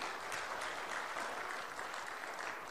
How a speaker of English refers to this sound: They're clapping because you had courage to come up to the front.